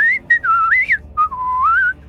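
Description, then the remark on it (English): A person whistles a lilting tune, the pure tone sliding and stepping between notes in short phrases with brief breaths between them, clear and fairly loud with no talking. “Yeah, the so whole time he's like whistling”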